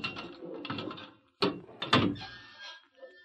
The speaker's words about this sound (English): When the first faint light of dawn broke through the single small window of the cell, the sheriff and a deputy unlocked the door.